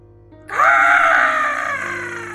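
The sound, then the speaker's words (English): A voice imitates a fox's scream: one loud, shrill, sustained cry that starts abruptly after a brief quiet moment and holds for about two seconds, fading slightly near the end. “So it's just like bird caws and fox screaming.”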